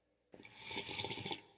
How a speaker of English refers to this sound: And on that note, let me take a little sip of mine.